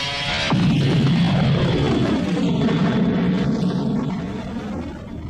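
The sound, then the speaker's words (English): A spaceship's engines suddenly roar to life and wind up for launch, a loud, deep throbbing rumble with a steady high whine layered on top, holding strong before easing slightly. No one speaks. “The ship's engines were already winding up.”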